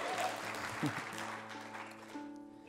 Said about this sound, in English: Yeah, you can clap for the Shenandoah Valley. That's all right.